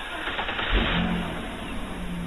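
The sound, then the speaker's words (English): A car engine turns over with a brief low rumble, then settles into a steady running hum as the car drives off to Stingray Point in Deltaville, moderately loud with no voices. “I jumped in my car and drove down to Stingray Point.”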